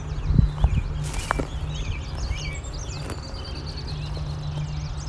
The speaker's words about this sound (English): Some walking noise.